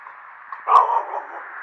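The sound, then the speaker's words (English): A dog gives one short, sharp bark against a steady background hum, moderately loud, with no other barks following. “Come on, dog, quit sniffing.”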